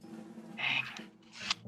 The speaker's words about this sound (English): And now I will roll damage. Hang on, I don't have enough dice.